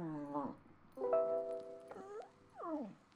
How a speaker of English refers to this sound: The dog is making noise. Sorry.